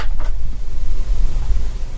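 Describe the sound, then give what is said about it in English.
A chair shifting and creaking, with a brief knock early on and then a steady low rumbling scrape that continues for a couple of seconds, as someone moves in it to read text on a computer screen. No one speaks. “you're going to hear the chair in the background. I got to move to read the text.”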